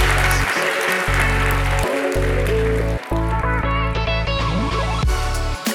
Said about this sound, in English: So if you could just give him a round of applause, I really appreciate that.